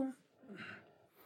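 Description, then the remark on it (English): A single soft, airy breath on a phone line, heard faintly with a slightly muffled, phone-like quality. Otherwise the line is near silent. “I know you're still out there. I can hear you breathing.”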